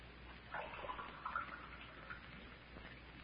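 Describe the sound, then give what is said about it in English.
Water is poured into a glass for a drink in a short, soft trickle that brightens as the glass fills, then tapers off. It's fairly quiet, with no one speaking. “could I have a drink of water? Oh, sure thing. Now, I'll have it for you in a jiffy.”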